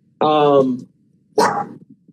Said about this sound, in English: You're not gonna sit here and bark the entire time.